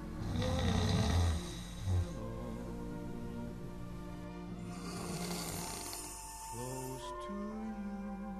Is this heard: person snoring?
yes